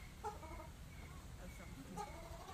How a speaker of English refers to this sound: What's the brown? It's a shell duck. Okay. Mm-hmm. Is that just a local Florida native, or is he? Oh no, it's an Asian. Okay. Asian duck.